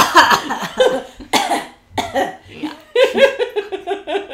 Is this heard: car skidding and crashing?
no